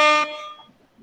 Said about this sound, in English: We had to give you some air horns tonight, and that seemed like the right spot.